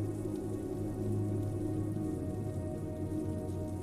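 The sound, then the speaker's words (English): Big raindrops fall steadily onto a glistening sidewalk in a village, a dense, continuous patter of drops at an even, moderate volume with no voices and no pauses. “The first big drops of rain splat on your cheek and bare hands. They fall on the glistening sidewalk, one at a time.”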